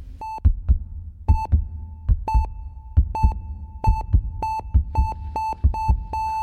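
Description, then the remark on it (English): A heart beats in steady, deep lub-dub thumps, loud, with sharp electronic monitor beeps pulsing along in time and a low hum underneath. No one speaks. “But I couldn't watch that show and not need to experience what it was like to feel someone's beating heart in your hand.”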